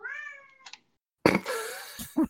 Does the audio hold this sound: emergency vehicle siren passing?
no